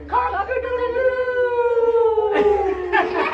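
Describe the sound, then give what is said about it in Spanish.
Children's voices imitate a rooster crowing, one long rising-then-falling "cock-a-doodle-doo" held for about two seconds, followed by a couple of shorter, brighter vocal bursts at the end. “And the rooster goes.”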